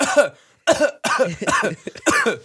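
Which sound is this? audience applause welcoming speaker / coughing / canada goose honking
coughing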